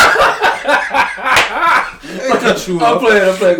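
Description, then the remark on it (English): Several sharp, loud smacks of hands slapping as people playfully slap-box land in quick succession, mixed with excited overlapping voices and bits of laughter. “Y'all got a slap box.”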